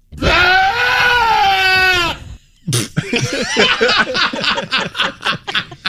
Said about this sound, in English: No, that's a goat. It's a goat. That's so hilarious. It is indeed a goat, and no, we should not be worried.